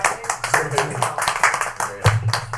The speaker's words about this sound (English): All right, guys. That's everyone. Everyone's here. Round of applause.